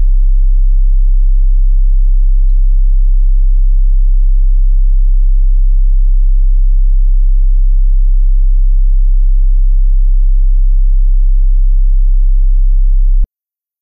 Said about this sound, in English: Can I generate a 33 hertz sine wave right here? Let's try this out. Oh, that's nice.